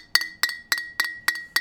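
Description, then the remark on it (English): Six bright clinks of glasses touched together in a toast ring out in a steady, evenly spaced rhythm, each with a sharp attack and a short shimmering tail, clear with no talking. “All right, what we got for the cheers?”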